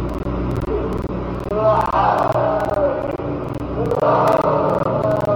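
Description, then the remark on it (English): A dense, continuous din of many wailing, screaming voices, with drawn-out cries rising and falling in two louder swells over a steady rumbling roar. “Now, people have recorded and heard screams coming from the ground before.”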